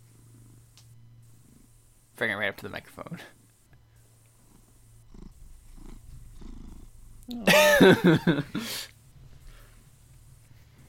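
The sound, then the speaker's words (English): A domestic cat named Charlie purrs in a steady, low, continuous rumble while being held in someone's arms. Two short bursts of speech cut in over it. “Dang, that's a purring cat.”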